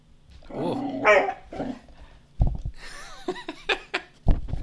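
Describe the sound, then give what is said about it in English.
A dog sniffs loudly right at the microphone, a series of short, breathy snuffling bursts, after some low, grumbling canine noises at the start. No one speaks. “Don't sniff the microphone, you dumbass.”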